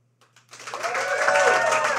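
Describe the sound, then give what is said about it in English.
An audience breaks into applause after a brief pause, voting on whether two presenters are wearing matching outfits, the clapping swelling quickly into a dense, steady wash of many hands with a few cheers mixed in. “Okay, by round of applause, who does think we're matching?”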